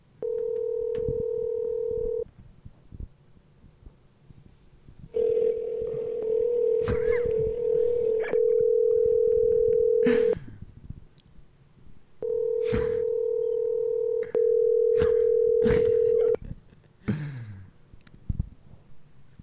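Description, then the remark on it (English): A steady telephone tone sounds in three long stretches, broken by quick dialing beeps and clicks, loud with no one speaking. “It's the marathon. The phones can't stop ringing.”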